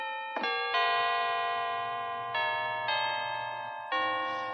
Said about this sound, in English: the whole Bradley family stops as the church bells start to play